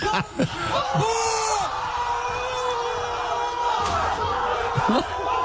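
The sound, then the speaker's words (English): People in Saudi Arabia shout and cheer excitedly, celebrating a Saudi Arabia goal against Argentina, while loud bangs and slamming thuds break through as a man rips his front door off its hinges and throws it into the garden; chaotic. “some people in Saudi Arabia celebrating the Saudi Arabia goal against Argentina yesterday”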